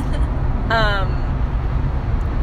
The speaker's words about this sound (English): Also, if you hear, the recording is crappy quality, because we're not using our recording equipment. Yeah. We're in my car. Yeah. Currently driving to Tacoma, which is where I was born.